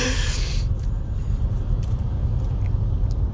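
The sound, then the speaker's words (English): Steady low rumble of road noise inside a moving car, a continuous dull drone filling the cabin with no voices, with a brief brighter hiss fading in the first half second. “It's like you're going to be in the car with me for the next hour, and this is what it would be like if you were to receive a monologue from me, and for some reason you can't talk, and we're in the car together.”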